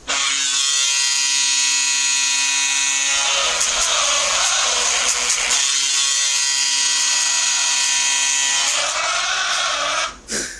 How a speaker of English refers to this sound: Surprised you never had hockey horns where you're from.